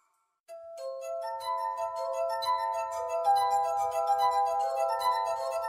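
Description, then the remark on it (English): Sustained, ringing glass tones from a glass harp, fingers rubbing the rims of an array of wine glasses, as in a Skoda automobiles television ad; several pure pitches layered into a shimmering chord that swells in quickly and holds steady and clear. “It's sometimes called the glass harp, an array of wine glasses that you play by rubbing your finger on the rim.”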